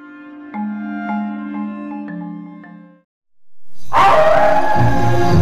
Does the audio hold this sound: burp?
no